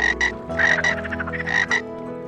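Several frogs croak in quick, overlapping bursts, a chorus of raspy, pulsing calls that rise and fall in clusters with no one talking.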